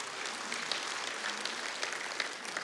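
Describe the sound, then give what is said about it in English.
A church audience claps steadily during a sermon, a dense, continuous patter of many hands with no pauses, holding an even, moderate loudness throughout with no voices standing out. “Put those hands together if you're going to clap.”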